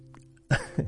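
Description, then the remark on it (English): Two quick, harsh coughs in succession, the first a little stronger, following a moment of quiet with a low steady hum underneath. “Excuse me, I was coughing.”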